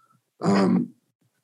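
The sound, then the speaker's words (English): A single loud, abrupt sneeze lasting about half a second, voiced and throaty, bursting out of near silence with no talking around it. “Bless you.”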